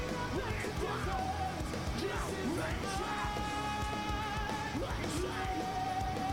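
A festival crowd yells and cheers at a concert, a dense, steady roar of many voices with rising whoops and shouts breaking out above it, loud throughout with no lull.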